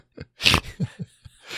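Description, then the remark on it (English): A stifled yawn: a sudden breathy rush of air, then a few short muffled vocal squeaks as it is held back, ending with a soft exhale. “I was trying not to yawn out loud.”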